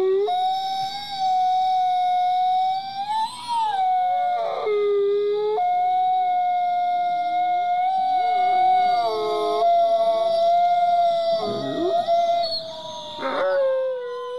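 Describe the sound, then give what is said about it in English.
A person imitates a wolf howl: long, wavering, sustained howls rising and falling in pitch, loud, with overlapping howling voices and no talking. “I think they're going to be turning into some wolves by midnight.”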